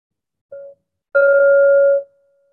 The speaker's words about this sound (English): The three bells, one just a moment, one midway through, and the final bell will be 60 minutes from now.